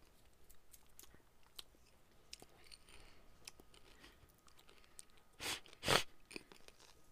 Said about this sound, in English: That was gross. That was gross. Sorry. Intensely loud sniffing. I promise you, I'm drinking Coca-Cola. Nobody here is snorting Coke. I'm sorry. I got a cold. I have a cold.